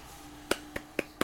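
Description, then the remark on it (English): One person claps for himself four times in a quick, steady rhythm, each clap a sharp, crisp smack, with no voices in between. “I'm applauding myself.”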